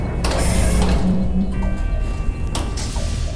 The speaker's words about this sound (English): Help me with this door.